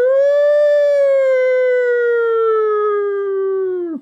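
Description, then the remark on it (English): A voice imitates an alarm siren for an offensive lineman entering the transfer portal: one long, loud wail, held for about four seconds while slowly sliding down in pitch, then cutting off abruptly. No talking. “There's an offensive lineman in the transfer portal, and I think that warrants like an alarm, right?”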